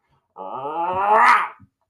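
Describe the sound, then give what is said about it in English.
A single drawn-out vocal roar, a voice imitating the lion cub Simba's growly "rawr" from The Lion King, rising in intensity over about a second before cutting off, fairly loud. “And Simba's just like, rawr!”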